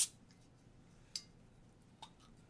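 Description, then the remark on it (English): The cap pops off a bottle of Uinta Brewing Company Cutthroat Pale Ale, 5% alcohol by volume: a sharp hissing snap, followed by two fainter metallic clicks spaced about a second apart, with no talking. “5% alcohol by volume. I'm going to pop this top.”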